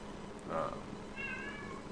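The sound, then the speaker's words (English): A cat meows twice in quick succession, a short mew followed by a longer, rising-then-falling one, moderately loud over a faint background hum. “The cat seems to have something to say.”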